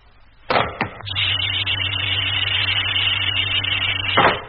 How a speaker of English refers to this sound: Airlock contact. Air pressure, maximum. Okay, Doc, open it up. Hatch opening.